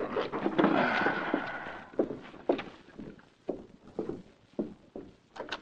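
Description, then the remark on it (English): A series of dull knocks on the door of an apartment building manager, evenly spaced hollow thuds following a brief rush of background noise, moderately loud with no voices. “A short time later, the manager of the town apartments arose from his chair as he heard a knock at the door.”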